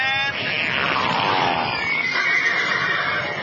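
horse neighing

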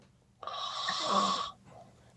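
snoring

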